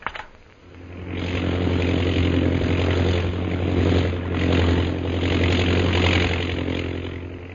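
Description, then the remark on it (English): A propeller airplane engine of a chartered plane leaving Shanghai bound for Mandalay drones steadily and loudly, a continuous low throbbing roar with a faint swell and dip in intensity, and no voices. “So Jungle Jim, Kolo, and Peter Hawkins board the chartered plane at Shanghai, Mandalay bound.”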